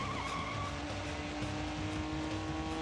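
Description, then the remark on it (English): A car engine roars and revs hard, with a screech of tires as the vehicle takes off, loud and continuous for the whole moment with no voices. “Really? You're gonna run after a car?”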